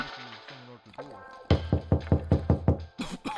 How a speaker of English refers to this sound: Well, I think I hear somebody at the door. So let's see who it is.